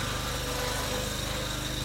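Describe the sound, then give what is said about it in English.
A lawn mower engine runs steadily, a constant droning hum with a rapid low-frequency pulse and no breaks over the short stretch. “He started his lawn mowing business in middle school and continued through high school and college.”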